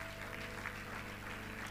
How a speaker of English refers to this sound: Let's celebrate God in his life. Let's celebrate the Lord in his life. Let's clap our hands.